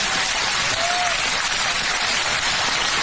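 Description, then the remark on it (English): An audience claps for Biden steadily for the whole stretch, a dense, even wash of many hands at a constant loud level, with a faint brief whistle-like tone rising partway through. “Did you, if you listen to the clap, some of them are like, yeah, hey, wait, yeah, whoa, wait.”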